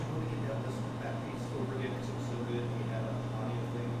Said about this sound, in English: And I'm listening and I heard something kick in. Yeah, I think it's the fridge that came on.